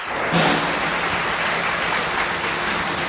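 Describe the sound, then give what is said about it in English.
In circus footage from 1965, a large crowd under a big top bursts into loud, sustained applause as tigers jump through hoops, a dense wash of clapping that swells suddenly and holds steady throughout, with no voices standing out. “They jump through hoops to uproarious applause.”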